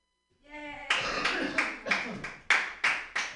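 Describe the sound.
A brief cheering voice gives way to a group of guests and LA comedians clapping on request, sharp bright claps landing in a loose, steady rhythm about three per second and staying fairly loud throughout.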